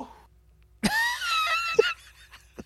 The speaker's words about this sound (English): I don't know if you saw this your screen, but this is what it looked like when you just coughed.